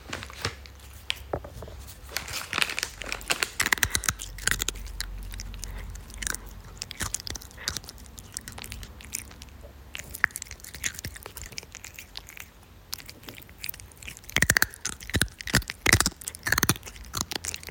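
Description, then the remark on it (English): A cat crunches on his favourite dry treats, crunchies, with sharp, irregular crisp bites and chewing clicks arriving in uneven bursts. The crunching is fairly soft, and a quicker flurry of crunches comes near the end. No one speaks. “Where else would you be able to hear a cat eating his favourite crunchies?”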